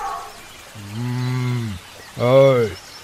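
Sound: goat bleating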